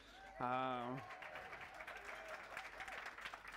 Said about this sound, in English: The applause for those online and those who don't know the story.